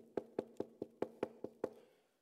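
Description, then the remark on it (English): Eight quick, evenly spaced knocks on a wooden door, fairly loud, each with a hollow resonant thud, followed by a brief fading silence. No one speaks. “Turned up at the end of the first month to collect the rent, knocked on the door.”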